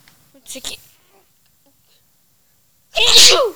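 human body sound, sneeze

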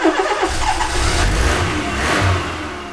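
vehicle, car engine starting

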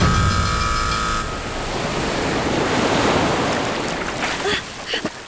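nature, ocean waves and surf

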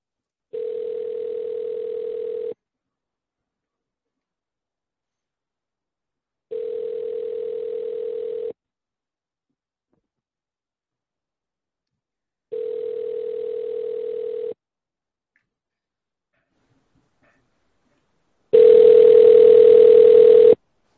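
signal or alarm, phone call ringing tone

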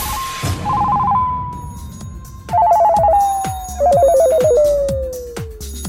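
household object, telephone ringing

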